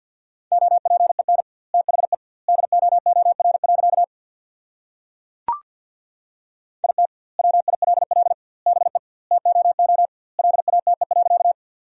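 Rapid Morse code beeps at 50 words per minute with double word spacing, sending a sentence built from the top 300 words, at a steady mid pitch, short and long tones grouped into words with longer gaps between, a brief click partway through, no voices.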